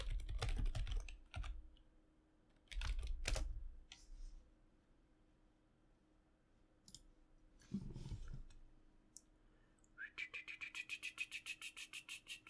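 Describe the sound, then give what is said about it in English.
Bursts of computer keyboard typing during a Google search, quick clattering keystrokes with pauses between, then a fast, steady run of evenly spaced clicks at the end. No one speaks. “Uh-oh. We're Googling, guys.”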